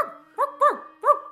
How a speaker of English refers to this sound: Oh, my old dog, Spocko. Spocko? Come here, Spocko. Oh, hey, what's wrong, Spocko? It's me.